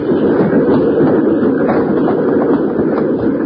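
A moving train rumbles and rattles along the rails in a steady, loud, continuous wash of noise, with no voices and no pauses.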